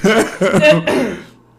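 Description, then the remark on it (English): Three rough, throaty coughs in quick succession, loud, the last one trailing off into quiet. “I have to edit that cough out.”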